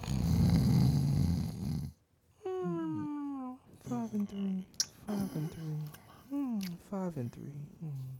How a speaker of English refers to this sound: And then, of course, we get to our sleepers where we cue the snore.